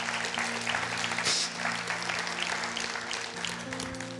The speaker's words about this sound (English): Yeah, you can clap. Go ahead.